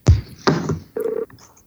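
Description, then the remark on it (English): Telephone dialing and ringing as a call is placed to Philip and Chris to talk about Planescape Torment Enhanced Edition: three short electronic tone bursts in quick succession, the last a steady ring tone, clear with no voices. “Well, let's get Philip and Chris on the phone, and we'll talk Planescape Torment Enhanced Edition.”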